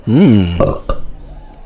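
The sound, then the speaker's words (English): A single loud belch during a beer tasting rises and falls in pitch for about half a second, followed by a short guttural grunt and a brief trailing rasp. “So we'll be tasting and discussing these beers and rating them with these SUDS ratings plus our signature belching sounds.”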